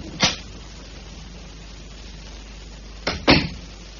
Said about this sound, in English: And then close the front door as you leave. Then we'll know you're gone.